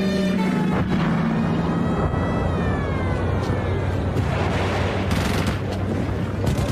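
Dense, rumbling battlefield noise of Jordanian guns and mortars shelling the Israeli half of Jerusalem, with repeated heavy booms and bursts of gunfire, steady and loud throughout, with a droning engine-like hum underneath and no talking.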